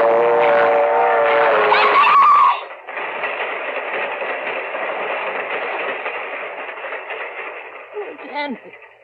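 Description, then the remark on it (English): A train rumbles loudly down the track, a steady roaring clatter that starts with a brief whistle-like tone and keeps going for several seconds, with voices faintly mixed in. “It's caught in the train! Hey, it's not coming down your track. It's coming down this one!”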